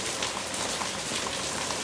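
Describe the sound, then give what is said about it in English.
Steady rain falls in a continuous, even hiss of droplets pattering on a surface, moderately quiet and unbroken, with no voices present. “We can't just leave him out in the rain and the cold.”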